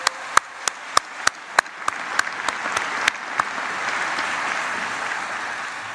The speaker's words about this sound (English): Well, let's give the band and the chorus another round of applause. That was absolutely outstanding.